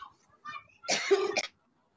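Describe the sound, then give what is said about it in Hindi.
A person coughs: a faint throaty rasp, then a harsh, loud burst of coughing lasting about half a second before silence falls. “आप आगे के प्रश्न पूछिए तब तक वो खांसी।”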